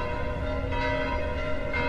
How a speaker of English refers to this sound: The bells of Sorrento, Sunday morning.